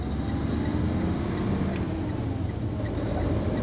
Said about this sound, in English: That, my friend, is the purring of a Montana Department of Transportation, or MDOT, snowplow. MDOT's Missoula area team was gracious enough to let me hitch a ride on this plow just hours before the winter's first major Arctic storm thrashed Montana.